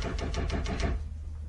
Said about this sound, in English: Merciful heaven! He's trying the door.